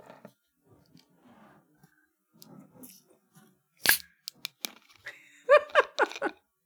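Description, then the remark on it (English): A can of Starbucks caramel frappuccino cracks open with one sharp pop, followed by a few small clicks and a brief hiss. Soft rustling comes before it, and voice-like sounds follow. “Let's crappy's bitch is open.”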